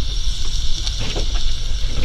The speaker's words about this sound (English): Right now we're cooking on the grill. Chicken, barbecue chicken on the grill. Hot outside.